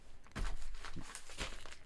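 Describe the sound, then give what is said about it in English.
Local newspaper pages rustle and crinkle as they're handled, a few crisp bursts of papery noise over about two seconds, with no one speaking. “This is the main event. This is the local paper.”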